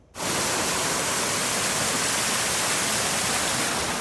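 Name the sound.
rushing water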